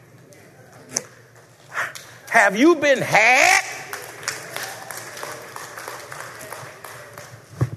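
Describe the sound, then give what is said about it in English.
A few people in an audience clap sparsely and unevenly, scattered claps continuing in the background while a man speaks loudly over them. “Well, y'all, two or three of y'all clapping because the others...”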